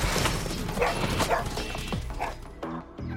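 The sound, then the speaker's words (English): A scared dog in Alaska, out of sight after chasing a large animal into an alder thicket, yaps repeatedly in quick, high-pitched bursts, sounding distant against a busy outdoor background, with a few short sharp yips near the end. “They could only hear it in the distance. It wasn't barking. It was yapping.”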